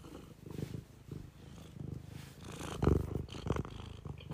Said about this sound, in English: All right, that's enough of the cat purring. That's enough. That's when I grab the cat by the tail and just go, that's enough of the cat purring.